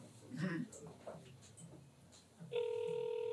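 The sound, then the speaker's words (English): A steady electronic ringing tone from an outgoing phone call starts partway through and holds loudly to the end, following a few seconds of faint, muffled talking. “He's ringing and ringing and ringing.”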